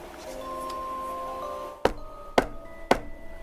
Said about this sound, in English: I know we yelled, but I am first just kind of just to cover my bases, knock loudly.